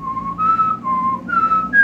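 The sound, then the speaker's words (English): A person whistles a short melodic tune, clear, with steady held notes stepping up and down in pitch. No talking, just the bright pure whistle. “I can whistle national anthem.”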